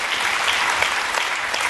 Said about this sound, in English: Applause after that, of course.